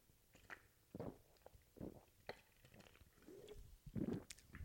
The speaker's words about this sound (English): let me take a sip of my Skittles.